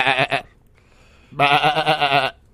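A sheep bleats close by: a short doubled bleat, a brief pause, then a longer, loud, wavering baa that trembles for about a second before cutting off.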